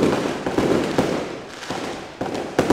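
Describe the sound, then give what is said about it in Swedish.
Fireworks explode outdoors at night in a rapid series of sharp bangs, roughly every half second, with crackling and rumbling echoes filling the gaps between blasts. “Och nu kör de igång ett fyrverkeri bara för det.”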